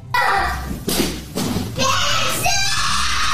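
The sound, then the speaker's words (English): Several heavy thuds and crashes as a child in a tantrum throws chairs around land in quick irregular succession, loud, with the child's agitated voice faintly mixed in. “Now he's just throwing stuff around, chairs.”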